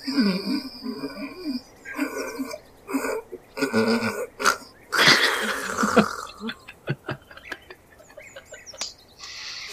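Raspy, wheezing snores repeat irregularly, short breathy bursts mixed with higher chirpy squeaks, with one louder, longer rasp in the middle and no one talking.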